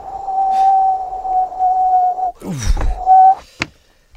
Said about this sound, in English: Oh, it's just... It's brass monkeys out there. Oh, yes, I can hear the wind. Let's shut that window.